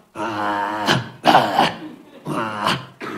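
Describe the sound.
A man's voice imitates a growling dog in three or four loud, rough, drawn-out bursts separated by short pauses, with no other sounds.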